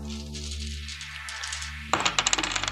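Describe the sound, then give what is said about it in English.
A pair of eight-sided dice rolling across a hard surface for a total of 6, a quick burst of clattering clicks and rattles after a stretch of low steady hum, moderately loud. “I rolled a 6”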